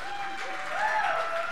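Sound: audience applause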